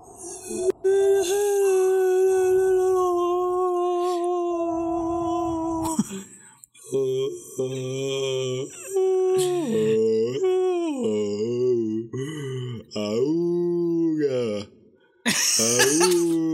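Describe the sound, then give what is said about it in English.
A voice imitates howling wind with long, sustained wavering moans that rise and fall in pitch, fairly loud, ending in a brief breathy whoosh. “Yeah, yeah, I'll do the howling wind.”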